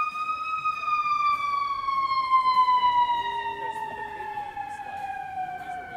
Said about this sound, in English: The ambulance is covering my brain fart. Go, ambulance.